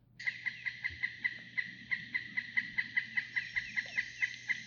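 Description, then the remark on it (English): A pileated woodpecker calls a long, steady series of loud, ringing notes, about four per second, evenly spaced and carrying clearly over faint background hum, with no one talking. “And it's very distinctive versus like the calls of the pileated, like...”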